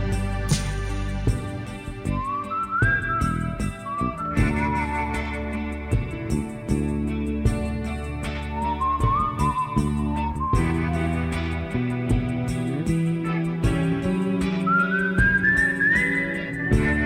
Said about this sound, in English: Truly one of the great whistling parts in all of rock and roll.